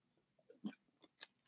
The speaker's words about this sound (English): as she just has to have a sip of her beer. Hold on.